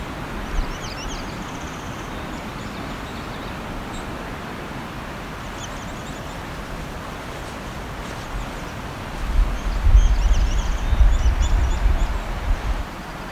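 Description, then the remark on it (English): Two song sparrows sing in short, high, trilling phrases that come and go over steady outdoor hiss, with a low rumble building toward the end. “two song sparrows.”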